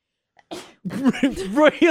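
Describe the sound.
A single sharp, breathy sneeze bursts out close by, followed almost at once by a person talking in an animated, rising and falling voice.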